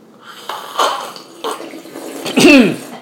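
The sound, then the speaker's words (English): A few wet slurping bursts as someone tastes dark pour-over coffee, with a louder, gurgling slurp near the end; no talking. “I think you're better at slurping than I am.”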